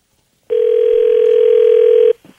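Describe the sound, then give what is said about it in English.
A steady telephone dial tone, as a radio station in Ontario places a call, hums loudly and evenly for under two seconds, then cuts off abruptly, leaving only faint handset noise. No one speaks. “Let's see if we can get him on the phone here.”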